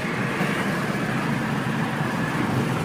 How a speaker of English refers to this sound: There's traffic right up close to the fucking car.